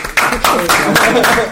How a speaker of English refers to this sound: Your claps are on point. Why are your claps on point?